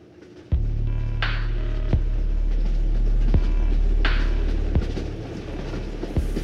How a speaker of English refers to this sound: As the train roared furiously down the tracks approaching Vaughan, Mississippi, Casey had absolutely no idea that there were trains occupying the station ahead of him, one of which was broken down directly on his line.